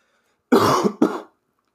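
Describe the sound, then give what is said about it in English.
Two harsh coughs from a person, a longer rough burst followed quickly by a shorter one, then silence. “Goddamn, as I cough.”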